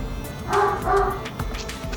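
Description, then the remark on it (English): A dog barks twice in quick succession, two clear, fairly loud woofs, followed by quieter rustling and background noise. “Perfect dog bark there at the end.”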